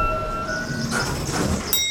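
A train rushes by close at hand, a steady heavy rumble swelling into a whooshing roar, with thin high metallic squeals ringing out near the end.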